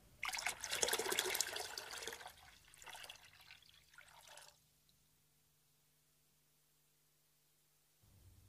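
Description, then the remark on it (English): Water pours in a steady, splashing stream for about four seconds, loud at first and then tapering to a trickle before stopping, leaving near silence with a faint low hum. “More water.”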